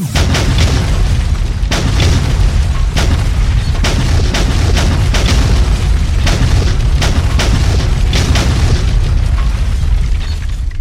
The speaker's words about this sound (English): Attack to Shadow 1. Good hits. Bombs on target. Repeat. Romeo, 10 second volley. Round 2!